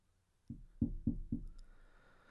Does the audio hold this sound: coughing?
no